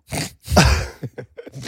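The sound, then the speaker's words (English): A short breathy build-up leads into one loud, explosive sneeze with a falling voiced tail, followed by a few quick, faint sniffs or breaths. The person sneezing thinks they are allergic to a cat. “I've sneezed a lot throughout.”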